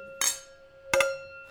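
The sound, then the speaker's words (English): Two bright glass clinks in a toast, separated by under a second, each leaving a thin ringing tone that hangs in the air, with no voices. “I was going to say cheers, everyone. Cheers. Everybody.”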